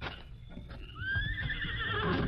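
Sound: horse neighing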